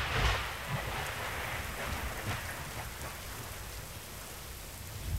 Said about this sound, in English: Thunder was rumbling far away. Wind was moaning in the jungle to the right. That storm was a cockeye bob.